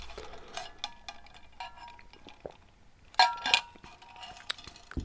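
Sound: glass clinking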